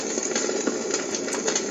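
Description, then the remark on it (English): A running game's sound effect for a fire obstacle to jump over: a steady roar of burning fire with scattered crackles and pops running through it, fairly loud, with no voices. “We have a fire.”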